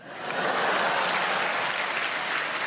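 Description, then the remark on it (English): A crowd breaks into sustained applause in answer to being asked who has been spat on in conversation, many hands clapping in a dense, steady wash that rises quickly and holds at a fairly loud level. “Just by way of applause, who has been spat on in conversation on the lip?”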